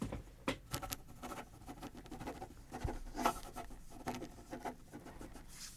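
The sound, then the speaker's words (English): A pen scratching across paper in quick, irregular strokes as a letter is written, fairly quiet, with small taps and scrapes between bursts of writing and no talking. “I'm just writing you a motivational letter about how awesome you really are.”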